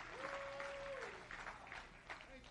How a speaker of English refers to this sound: How many is thankful for this new birth experience today? Oh, somebody give him a hand clap of praise right now. Hallelujah.